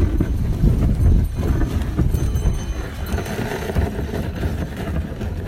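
A horse's hooves clip-clop steadily as it trots pulling a one-horse open sleigh past an old barn, through a wooden fence into snow fields, the rhythmic plodding continuous over a low rumble of runners and movement, with no talking.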